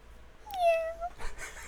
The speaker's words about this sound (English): There's a cat meowing off in the distance, and my cats never meow